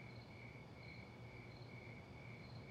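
A dense chorus of crickets in Glenville, Georgia, chirps steadily, their high-pitched trills layered into a continuous pulsing drone, with no voices present.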